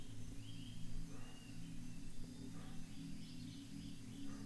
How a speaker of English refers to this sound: Which must have been discarded by the monkeys that you can hear howling in the distant forest canopy.